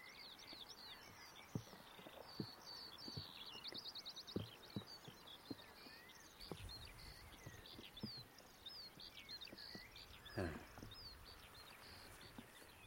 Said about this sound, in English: That's skylark.